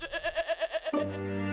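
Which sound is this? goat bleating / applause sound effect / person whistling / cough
goat bleating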